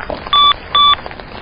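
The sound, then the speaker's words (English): A mobile phone gives two short, bright electronic beeps as its battery dies, evenly spaced and fairly loud, the low-battery warning standing out clearly over faint background noise with no one talking. “What's that? My phone died.”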